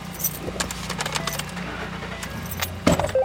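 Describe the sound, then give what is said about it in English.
A sheriff's department captain's keys jangle in a quick, bright flurry of metallic clinks over the low, steady rumble of his pickup truck's engine as he drives off toward sites where protesters and police have clashed, with a louder clunk near the end. “of the Cass County Sheriff's Department hops in his truck and drives towards several sites where protesters and police have clashed.”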